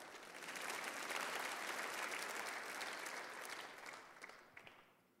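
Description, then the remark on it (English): An audience breaks into sustained applause for the church as the hope of the world, a dense wash of many hands clapping that holds steady for several seconds, then thins and fades out with a few last scattered claps. “So God, yes, you can clap for that.”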